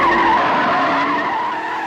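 A car brakes hard to a stop, tires squealing in a loud, sustained screech with a steady high pitch that fades slightly toward the end; no one speaks.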